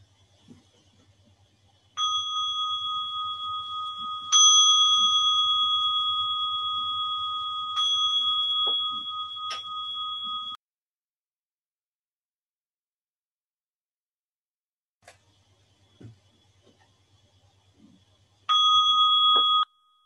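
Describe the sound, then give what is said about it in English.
A bell is struck several times in close succession to end a five-minute sitting, each clear ringing tone sustaining and overlapping the next, then a long silence before one final ring near the end. Fairly loud, no voices. “So we'll sit now for 5 minutes and then I'll ring the bell and then we'll write for 5 minutes.”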